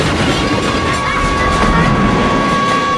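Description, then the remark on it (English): A train car races along the tracks with a loud, steady rumbling roar and a sustained metallic whine riding above it, continuous for the whole stretch, with no voices. “And then when I'm playing, I feel like I'm like a train car going really, really fast down the tracks.”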